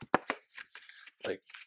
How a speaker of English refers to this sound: Like scroll, this is kind of card stock here, but like scroll the paper over the pencil like that and like scan the pages very quickly and then put one paper aside, then take the next paper.